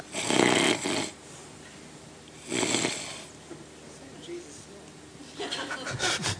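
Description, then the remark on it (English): A person mimics snoring with three loud, raspy breaths spaced about two seconds apart, clear, with quieter noisy breathing in between. “You know, I'm sure he must have snored.”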